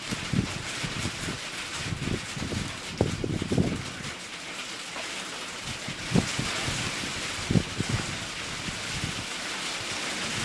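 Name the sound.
wind blowing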